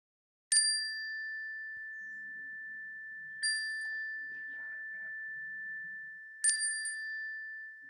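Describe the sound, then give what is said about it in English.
A chime is struck three times at even intervals of about three seconds during an audienceal prayer, each bright strike blending into a steady, sustained ring that carries through the quiet with no talking. “And at the sound of the chime, we'll speak what's on our hearts into our shared sanctuary.”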